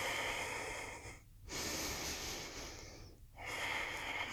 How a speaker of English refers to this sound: Inhale, reach your arms up into chair pose. Deep breaths in and out through your nose.